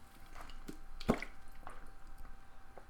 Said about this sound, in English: Of course I get the hiccups during the show. Hold on while I take the great old hiccup cure, a glass of water.